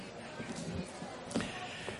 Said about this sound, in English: Thanks for, I hit the table. I'm okay.